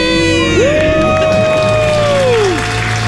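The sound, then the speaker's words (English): A couple from Southern California, having paid off their debt, gives a loud, sustained celebratory debt-free scream that rises sharply, holds for about two seconds, then drops away, with whooping, cheering and crowd noise filling the background throughout. “Let's hear your debt-free scream.”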